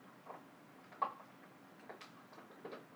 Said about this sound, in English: Sorry. There's noises of my dog chewing on a bone. Just ignore that.